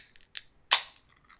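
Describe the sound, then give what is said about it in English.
A canned Gatorade, the second can of the session, cracks open: a small metallic click from the tab, then a sharp, loud pop that trails off into a brief fizzing hiss. No one speaks. “I actually have a canned beverage. I had one that I opened before, and now here's the second.”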